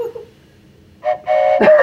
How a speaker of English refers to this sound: Today, the corn whistle means we really need to move on. So feel free to keep using that.